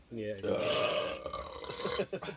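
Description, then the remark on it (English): A long, loud belch, starting with a short voiced note and swelling into a rough, gravelly rumble that drags on for about two seconds before breaking off in a few sputters. “Now that we're done burping and throwing up, we shall be back, folks.”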